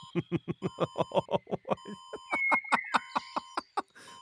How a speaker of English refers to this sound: His collar begins beeping and flashing.